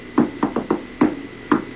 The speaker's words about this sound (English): He would knock on the door, and he would say, "There's nobody home. I hope, I hope, I hope, I hope, I hope."